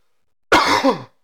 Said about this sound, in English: I apologize for the coughs.